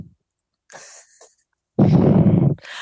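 Heavy breathing right against the microphone: a softer, airy exhale followed by a long, loud, rumbling gust of breath that crackles with distortion, then another starting at the end. No one speaks.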